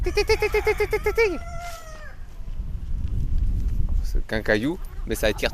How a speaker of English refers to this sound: In 2021, he set up the Conservatoire du Coq Gaulois, a conservatory housed on an educational farm in the village of Méry-sur-Seine, where he breeds and promotes the roosters. I went along to meet him and his very vocal flock.